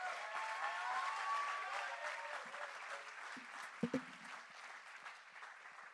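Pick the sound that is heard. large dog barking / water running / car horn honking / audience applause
audience applause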